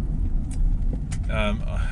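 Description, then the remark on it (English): A steady, loud low rumble of a car engine and tyres on the road fills the whole stretch, with a brief higher-pitched tonal whine rising above it near the end. “Obviously, as you can hear now, the indicators, the engine, you get other vehicle noise and road noise and rain and wipers, and you get me coughing and yawning and sort of things like that as well.”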